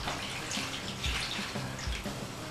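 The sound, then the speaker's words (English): Cooled vinegar-and-sugar liquid is slowly poured over salmon, onions and bay leaves, a continuous splashing trickle with a few soft gurgling bumps, moderately quiet and with no one talking. “And then my vinegar and sugar liquid cooled off. Just slowly pour it all over the whole thing.”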